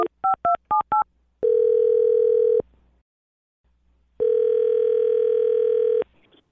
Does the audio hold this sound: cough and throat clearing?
no